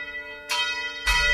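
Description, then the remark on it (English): A bell rings out with two loud, resonant strikes about half a second apart, its bright metallic overtones lingering between hits. No voices are heard. “And at that moment, there's the bell.”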